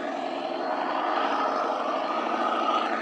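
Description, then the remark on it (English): A loud truck engine roars steadily for a few seconds, a dense, even rumble with a broad noisy hiss and no voices. “That's a loud truck.”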